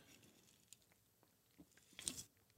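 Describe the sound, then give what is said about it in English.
Someone takes a sip of a lager: faint wet mouth clicks, then a short, louder slurp and swallow near the end. Nobody speaks. “Excuse me, I had to take a sip of my beverage of choice, a fine lager what's the name of this?”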